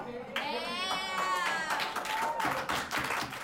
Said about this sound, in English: DHS will be closed for instruction beginning on Monday, March 16th. Classes are scheduled to resume on Monday, April 13th. Students could be heard clapping and cheering.